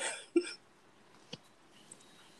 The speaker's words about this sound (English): Don't worry, people. I'm coughing because my throat's a little itchy. don't get it twisted. I need to drink some water.